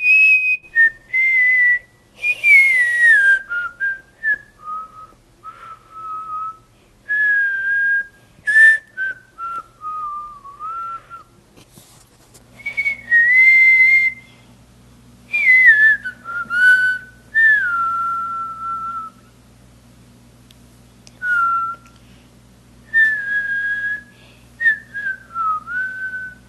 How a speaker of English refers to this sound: Those were so great, and so many more of you sent us your own versions of the But Why theme music and you whistling it. It was so awesome to spend the last few days listening to all you great whistlers.